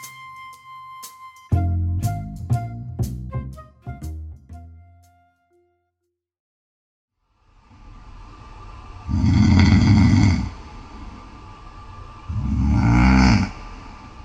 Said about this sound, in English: He was once proud of the fact that he didn't snore, but now it's at the point where he's recording his snoring for strangers on a podcast.